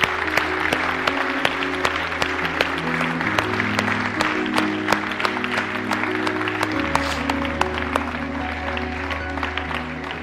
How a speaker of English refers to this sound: Put your hands together. Come on, one more time.